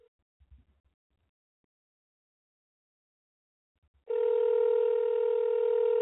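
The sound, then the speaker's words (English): A call from a cell phone: after a few seconds of near silence with faint handling bumps, a loud, steady electronic phone tone starts abruptly and holds without a break to the end. “Now, mind you, I'm using my own cell phone.”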